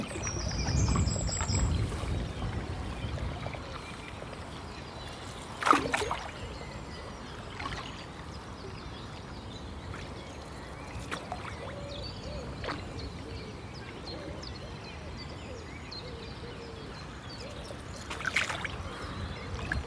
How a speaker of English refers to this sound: So it's a bit windy, so it's difficult to be quiet because you've got to paddle fairly hard, but we'll just go through this section for about a kilometre as silently as we can and hope we're lucky.